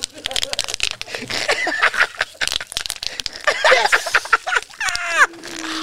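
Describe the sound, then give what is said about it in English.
Bubble wrap popping in a rapid, irregular string of sharp, crisp snaps, mixed with high squeaky chirping sounds and a brief descending whine near the end. “When I was a kid, I looked forward to getting new furniture just to fucking pop the bubble wrap.”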